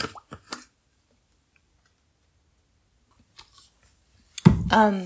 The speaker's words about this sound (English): Wait, I need some water. Hold on.